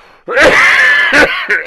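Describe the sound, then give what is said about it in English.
A loud coughing fit: one long rasping, strained cough followed by several shorter harsh bursts in quick succession, with no speech in between. “Cough I'm not going to... I'm not going to cut that one out.”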